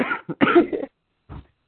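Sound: cough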